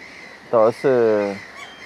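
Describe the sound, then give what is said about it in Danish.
Common gulls, white-headed, white-bodied gulls with light grey wings, calling: a short, nasal cry followed by a longer, drawn-out mewing call, clear and fairly loud against a quiet background. “Der er også stormmåger, og for det er lytterne, der ikke lige har styr på alle mågearterne, så er stormmågen det, du vil kalde en måge.”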